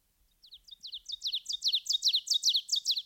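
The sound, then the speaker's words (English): A songbird sings a rapid, accelerating series of bright, high chirping notes that grow louder and more insistent, heard clearly with no other sounds. “I hear it very frequently after sundown, when the ecstatic singer can hardly be distinguished against the sky.”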